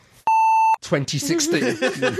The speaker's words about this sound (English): I have to put a beep in there. Yes, you will. Never had to use a beep with you before.